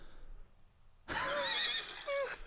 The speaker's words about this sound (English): I don't think I have any more cat sounds. I don't. That was a horse.